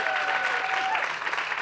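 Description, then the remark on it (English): A crowd at an afternoon talk applauds to welcome Umu Sangare, clapping steadily in a dense, continuous patter of applause, loud throughout, with a faint whistle-like tone held for the first second. “And let's give Umu a big round of applause.”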